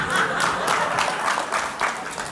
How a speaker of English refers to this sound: A clap.